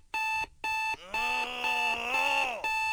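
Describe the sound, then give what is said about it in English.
An electronic Self-Esteem Alarm Clock from the makers of Mandol goes off with loud, bright repeated beeps, two short bursts, then a long sustained blare with a low wavering groan underneath, ending with one more beep. “From the makers of Mandol comes the Get Your Ass Out of Bed, You Beautiful Son of a Bitch Self-Esteem Alarm Clock.”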